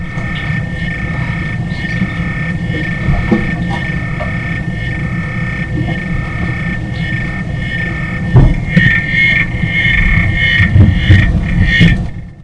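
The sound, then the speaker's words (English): A pet African clawed frog named Hito, kept in Utah, trilling its song: a steady, rapid low-pitched throbbing of clicks over a constant buzzing hum, growing a little louder in its final seconds, with no voices. “I'm speaking with Russ Wilson in Utah about his African clawed frog, Hito.”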